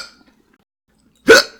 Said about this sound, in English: I hiccup every time. Because you eat it too fast. I can't help it.